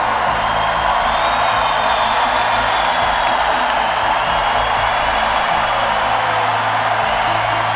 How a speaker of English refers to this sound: That's a big round of applause for the United Kingdom.